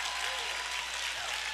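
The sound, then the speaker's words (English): A church audience applauding a man who helped start the church, a dense, steady wash of many hands clapping at once with no pauses, filling the space evenly throughout as he makes his way up to the front. “Come on, keep clapping until he gets up. He's never gotten this applause.”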